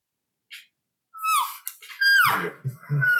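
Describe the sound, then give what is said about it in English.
A voice imitates elk herd talk, made while moving so the noise sounds like other elk: a quick breathy puff, then a few high, squealing mews that slide downward in pitch, the later ones over low, grunting chuckles. “So when you move, just start making a little herd talk, man.”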